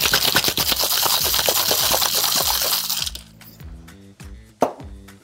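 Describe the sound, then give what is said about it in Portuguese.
Rapid clinking and rattling of ice in a cocktail shaker while mixing an alcoholic cocktail, for about three seconds, loud and bright, then it stops, leaving faint background music and a single sharp knock. “Vamos botar o nosso gelo. E agora começa a festa. Mixando coquetel alcoólico.”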